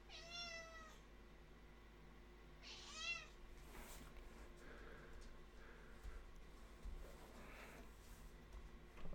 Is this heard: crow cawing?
no